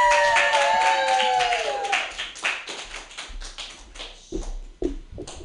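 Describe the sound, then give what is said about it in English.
An audience at a stand-up comedy show claps in dense, uneven bursts as a comedian is introduced, loud at first and gradually thinning out, with a high whistle-like cheer gliding downward near the start. “Put your hands together”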